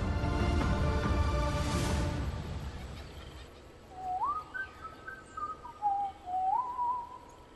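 A man whistles a short melodic tune up close, clear pure notes sliding between pitches in a bouncy phrase, following a few seconds of louder, dense background sound that fades out.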